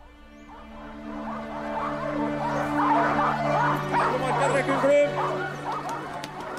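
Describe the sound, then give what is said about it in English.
A chorus of sled dogs at a long dog sled race in a tiny frozen town in rural Norway in January, with sleds pulled by 12 dogs, barks, yips and whines excitedly all at once, a dense, continuous clamor that swells slightly louder midway, with a steady low drone running underneath. “And so to today's story, which involves a young woman and one of the longest and toughest dog sled races on the planet, the Famant Loped.”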